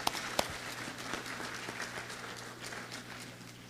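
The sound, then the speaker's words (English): An audience claps steadily for a few seconds, a dense wash of many hands with a couple of sharper claps standing out near the start, over a low steady hum. “No, we'll clap for that.”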